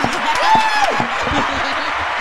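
A small group claps steadily for a couple of seconds, with scattered sharp claps mixed among cheering voices and a brief high whistle-like tone rising above the noise. The applause is for the first-place winner of a prize.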